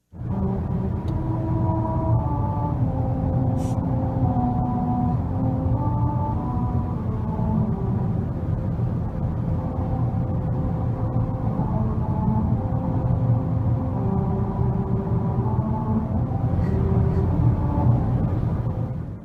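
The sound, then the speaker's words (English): A car rolls over musical rumble strips on a stretch of road near Albuquerque, New Mexico, driven at 45 miles an hour, its tires droning a slow, stepwise melody of buzzy tones above a constant loud road rumble, heard from inside the vehicle with no talking. “they put in rumble strips that play America the Beautiful when you drive over them at 45 miles an hour”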